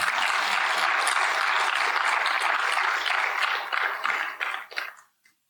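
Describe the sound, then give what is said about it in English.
A church crowd applauds the elders and their wives coming up on stage, with steady, dense clapping for about four seconds, then it thins out into a few scattered claps before fading to silence. “When we are sick, yeah, go ahead, clap.”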